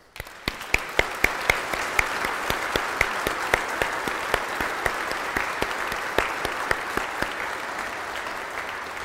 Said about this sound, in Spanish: Y yo creo que todos nosotros nos mírenos y le demos la bienvenida a nuestra iglesia con un gran aplauso.